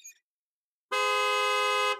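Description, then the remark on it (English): An ice cream truck horn, honked by Mr. Sweets, sounds one long, steady honk, loud, holding for about a second after a short silence. “Mr. Sweets honked his horn.”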